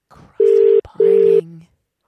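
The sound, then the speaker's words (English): A telephone ringback tone of an outgoing call to a band's bass player: two steady, loud buzzing pulses with a brief gap between them, the classic double ring of an outgoing call, followed by a faint murmur. “Oh, there we go. Ringing.”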